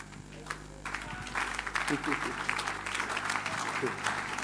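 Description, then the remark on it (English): Scattered applause from a small group, with uneven claps building into a steady patter that holds for several seconds, while a faint voice murmurs underneath. “Oh Lord, at least one or two people are clapping.”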